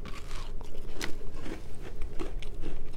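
Crunchy bites and chewing of a chocolate chip cookie, with sharp crackly crunches recurring every half second or so over steady mouth noises; no one speaks.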